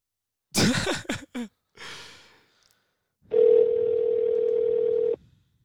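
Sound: phone dial tone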